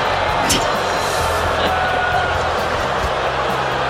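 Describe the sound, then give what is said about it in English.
A large arena crowd at the Valorant Champions Tournament Finals, reacting to Elon Musk's attendance, roars in a steady, loud wash of cheering and shouting that holds for the full four seconds, with a few sharper bursts rising above the din. “Sports news, Elon Musk attended the Valorant Champions Tournament Finals this weekend, and unexpectedly, this was the crowd's reaction.”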